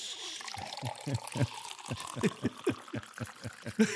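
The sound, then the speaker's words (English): Someone gulps down a pint of water in a quick, steady series of swallows, each one a soft, wet glug, with a faint background hiss. “I'm literally drinking a pint of water right now.”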